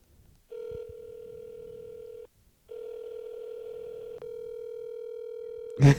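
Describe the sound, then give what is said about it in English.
An outgoing phone call's ringback tone purrs twice as a man is called, long steady electronic rings separated by a brief silence, fairly clear, ending with a sudden loud clunk. “I told him I was going to call him during the podcast and see if he answers. I'm going to call him.”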